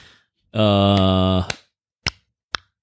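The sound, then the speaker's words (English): A steady voiced hum gives way to three sharp, crisp tongue clicks spaced roughly half a second apart, a mouth imitating a slow clap. “No, don't clap with your tongue. That's just weird.”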